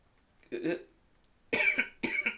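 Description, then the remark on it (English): Three coughs from people smoking cannabis: a softer, lower one first, then two harsher, louder barks in quick succession after a brief pause, with no talking in between. “And we are coughing because we are stoners.”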